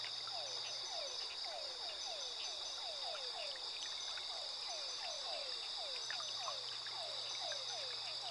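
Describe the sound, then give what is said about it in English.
A dense chorus of frogs croaking by rippling water in rapid, overlapping downward calls, steady throughout, with a constant high insect-like whine behind them and no voices. “A chorus of croaks, chirps, and the occasional splash of playful creatures.”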